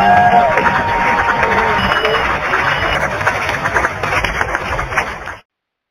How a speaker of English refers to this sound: So yeah, let's welcome him with a wonderful round of applause.